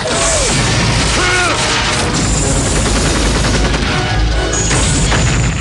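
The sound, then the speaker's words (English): Dense, loud gunfire and heavy missile explosions rock a tank with Rambo inside, rumbling continuously with bursts of rapid shots, crashing booms and mechanical clatter filling the whole stretch, chaotic like a battle. “Rambo stays focused as gunfire and missiles rock the tank around him.”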